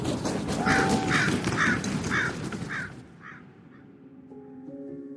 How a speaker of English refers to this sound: And with that, the three birds flew away.